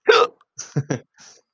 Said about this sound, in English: Who's got the hiccups? Who's got the hiccups? Me?